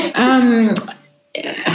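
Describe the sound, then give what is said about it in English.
A loud sneeze: a drawn-out, pitched vocal intake that breaks into a sharp noisy burst, then a brief silence before another rush of breathy hiss. “Bless you, whole church.”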